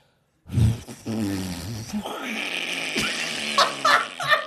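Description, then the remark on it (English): A voice imitates a fart, starting with a low, buzzing, harmonic rasp, then breaking into a noisy, sputtering, bubbling hiss with crackly pops toward the end. “So it started silent, turned into a fart, then it turned into a cauldron.”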